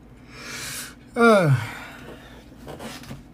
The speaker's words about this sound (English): I do apologize. I am very, I don't know, like yawning and stuff. It's because, again, it is very late. Not really late, but it's late nonetheless.